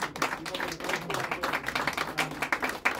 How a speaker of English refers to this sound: And feel free to applause them if you want.